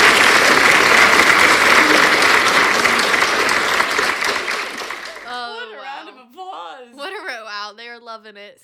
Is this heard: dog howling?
no